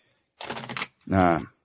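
A short, quick riffle of playing cards being shuffled, a dense burst of rapid flicking, followed immediately by a brief spoken reply.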